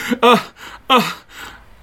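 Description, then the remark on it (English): Two sharp, breathy gasps from one voice, fairly loud, separated by a brief pause, then trailing off into soft breath. No words are spoken. “A gasp.”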